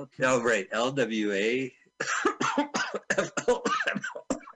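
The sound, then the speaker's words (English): A drawn-out vocal sound gives way to a rapid run of harsh, choppy bursts, like someone forcing out a string of mock coughs and throat-clearing noises. “You didn't even do the cough.”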